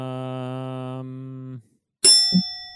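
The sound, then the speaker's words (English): A steady, buzzy low tone holds for a second and a half, then after a short silence a single loud, bright bell ding strikes and rings out with shimmering overtones. “Should I try Bell?”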